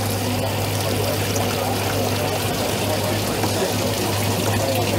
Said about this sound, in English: The silts don't stick to the product because it's plastic and it's inert, so it goes through. So if we show a bucket of water here, pour that over there.